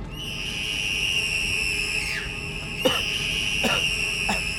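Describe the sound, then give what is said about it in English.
A human scream: one long, shrill, steady-pitched cry that holds for several seconds. A few brief swooping bursts break over it near the end. No one speaks. “I know that scream anywhere. I know that's ….”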